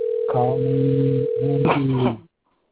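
A steady, buzzy ringing tone of an outgoing telephone call comes through a narrow phone line, holding for about two seconds with a brief dip partway, while faint voices murmur underneath before it cuts off.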